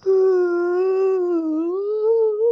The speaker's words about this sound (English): That was a big yawn.